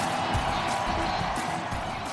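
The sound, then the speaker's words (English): A stadium crowd cheers a defensive play in a steady, dense roar of many voices that holds at an even loudness for the whole couple of seconds, with no single voice standing out. “My goodness, what a defensive play. Half the crowd can't even believe it.”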